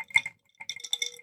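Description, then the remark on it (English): Ice cubes clink and rattle against each other inside a glass that is being swung for ASMR, in two short bright bursts with a brief pause between them and no one talking. “My ice cubes are not really.”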